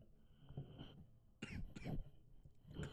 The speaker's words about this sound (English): You just let it out. Cough it out. It's all right. Cough it out, you get it over with. All right. I'm back. So, yeah, exactly. Just cough it out.